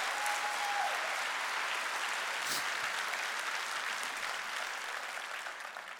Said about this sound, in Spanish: Date un aplauso si te quieres ir con Cristo.